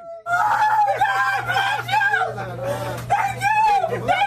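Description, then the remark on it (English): A woman shrieks and squeals excitedly in loud, sustained bursts with laughter mixed in, dominating over a steady low hum, at a Los Angeles convenience store where a billion-dollar Powerball ticket was sold, as she claims the jackpot. “She showed up today at the convenience store where the ticket was sold, screaming so loud you could hear her for blocks.”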